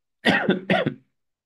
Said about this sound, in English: Excuse me, I've had a little bit of a cough the past few days.